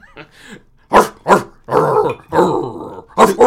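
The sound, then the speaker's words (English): A person imitates a dog, letting out a few sharp vocal barks mixed with gruff, growling yaps in an uneven burst. “Could you give us a bark?”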